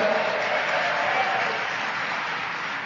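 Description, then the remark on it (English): A steady wash of audience applause, dense and sustained for a few seconds, many hands clapping together with no clear individual claps standing out. “drinking got a round of applause?”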